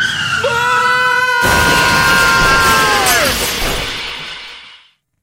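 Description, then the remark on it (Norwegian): A car crash: a high, wavering tire squeal builds, then a loud smashing impact hits, followed by several seconds of crunching metal and shattering glass while the squeal bends downward before everything fades. “Så du det bilkrasjet der borte, eller?”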